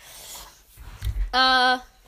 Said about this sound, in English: why are you just intensely breathing? Get yourself together.